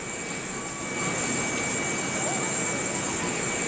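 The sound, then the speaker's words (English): A steady, loud roar of a Boeing 747 jumbo jet's engines with a high-pitched turbine whine, swelling slightly after the first second and holding constant throughout. “The huge aircraft is itself cause for excitement.”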